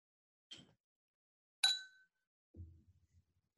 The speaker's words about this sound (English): I I have a glass, and I have another glass. Cheers.